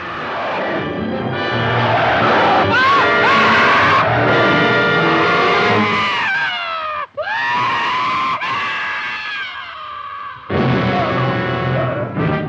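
A loud, drawn-out scream from a film scene wails up and down in pitch for several seconds, breaks off briefly, then returns with another shrill burst, dominating everything with no talking.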